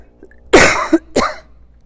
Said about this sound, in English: Sorry, hopefully I'm not going to cough too much.